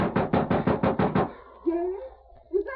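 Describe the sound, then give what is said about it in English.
A rapid, urgent burst of about seven loud knocks on the locked door of a house on the edge of the town of Sterling, evenly spaced, followed by a voice starting to call out once the pounding stops. “Ma, in the name of heaven, Ma, unlock the door.”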